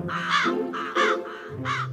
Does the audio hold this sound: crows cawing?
yes